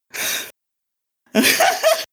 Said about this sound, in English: I'm panting from these fucking jumping jacks, god damn it.